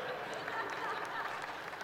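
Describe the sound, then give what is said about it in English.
An audience claps steadily for the whole stretch, a dense, even wash of many hands with no clear individual beats and a faint murmur of voices mixed in. “You don't have to clap.”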